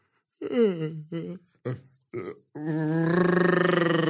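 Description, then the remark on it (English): A person imitates a bear yawning: four short, low grunting bursts, then one long, drawn-out groaning yawn that stays loud and steady until the end. “and we know how bears sound when they yawn.”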